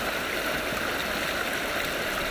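nature, flowing stream water

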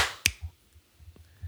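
human body sound, hand clapping

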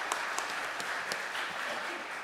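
crowd, round of applause

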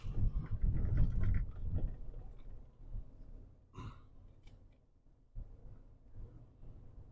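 human body sound, gulping water

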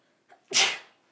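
human body sound, sneeze

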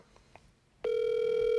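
signal or alarm, telephone dial tone

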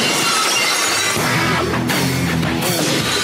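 sound effect, glass shattering

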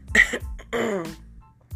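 human body sound, cough

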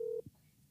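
signal or alarm, phone dialing tones

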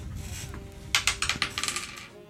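household object, dice being rolled

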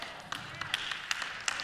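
crowd, audience clapping

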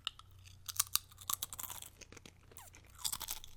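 food or drink, crunching potato chips

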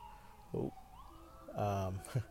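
vehicle, ambulance siren passing

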